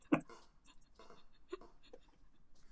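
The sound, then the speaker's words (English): Soft keyboard typing: a handful of quiet, irregular key clicks and taps spread over a few seconds, with a faint low hum underneath and no one speaking. “I'm typing, which is the noise.”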